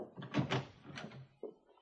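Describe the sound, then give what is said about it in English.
A door opens with a brief rattling scrape, followed about a second later by a single firm knock as it shuts, fairly quiet. “Now, that'd be my job, wouldn't it? Till we get swinging doors, guess it is.”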